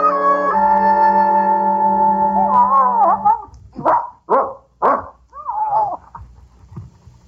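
A dog gives a long, drawn-out howl, then three sharp, loud barks in quick succession, trailing off into a short whine. No one speaks.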